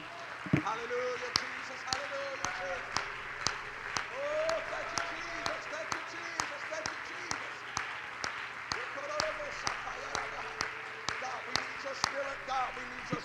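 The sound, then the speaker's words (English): An audience at a church worship service claps hands together in a steady, rhythmic beat, about two claps per second, with voices rising and falling underneath throughout. “If you want the Lord to speak to you tonight, put your Bibles down, clap your hands, lift up your voice.”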